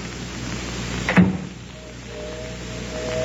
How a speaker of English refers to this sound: Oh, listen. Hear that? Train whistle.